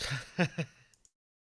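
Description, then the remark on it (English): A few short, raspy coughs: two strong bursts in quick succession, then a couple of fainter little ones trailing off into silence. No one speaks. “Hey, so I was just coughing then.”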